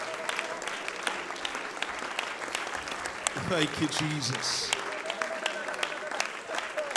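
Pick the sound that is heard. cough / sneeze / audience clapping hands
audience clapping hands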